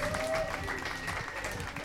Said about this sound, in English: Stephen Hawking! Stephen Hawking, ladies and gentlemen. One more time, big round of applause for Stephen Hawking, ladies and gentlemen.